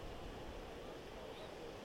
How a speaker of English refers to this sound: The wind was really strong, and so some of those waves that were crashing onto the shoreline were 2 to 3 feet, 2 to 3 feet tall.